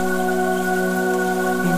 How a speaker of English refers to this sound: Each drop plays a soothing melody, a calming symphony that envelops you. As you listen to the rain, synchronize your breath with its pattern.